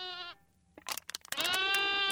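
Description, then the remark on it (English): Two loud mountain goat bleats in the Rocky Mountains, a short nasal one and then a long wavering cry, separated by a burst of scuffling noise, with no talking. “If you can listen closely, you can hear mountain goats bleating and bounding and eating cans as goats are wont to do.”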